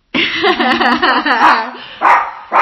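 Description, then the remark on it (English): A dog barks in a drawn-out, whiny run of yelping barks, followed by two short, sharper bursts after a brief pause. “Right, we'll better go because the dog's trying to purse.”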